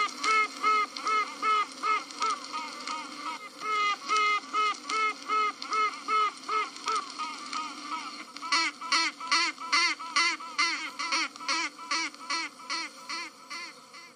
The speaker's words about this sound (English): You know, I think your listeners would like to hear this quacking. That's not a bad idea. Here is what quacking bees sound like.